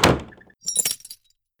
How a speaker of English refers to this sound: He slammed the door so hard the plate glass windows of the old Rexall drugstore tinkled like wind chimes.